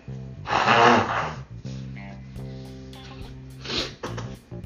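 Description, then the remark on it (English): A single loud, breathy sneeze bursts out sharply, then gives way to low voiced murmuring and a second, softer exhaled burst near the end. “so another sneeze.”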